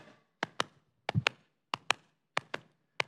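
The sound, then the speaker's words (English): Sharp knocks on a door, struck in quick pairs, repeating steadily about five times. The raps are crisp, with brief silence between each pair and no voices. “He knocks on the door.”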